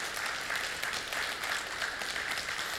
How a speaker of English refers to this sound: And if you're dealing with this, you can give him a clap. That's good for the Lord.